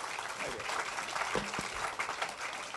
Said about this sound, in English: Let's have a round of applause to welcome our panel tonight.